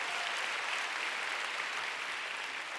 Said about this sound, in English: Oh, please give them a big clap.